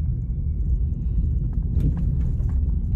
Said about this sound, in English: Man. It's all windy and stormy out.